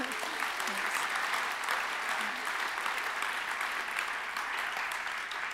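Steady audience applause fills the whole stretch, a dense, even patter of many hands clapping at a loud level with no talking over it, thanking a woman who has just been interviewed.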